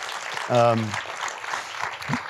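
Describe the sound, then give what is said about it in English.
An audience applauds a film steadily in a dense, crackling wash of clapping, with a brief voiced whoop or cheer rising out of it early on. “Yeah, this is another round of applause for the film if you enjoyed it.”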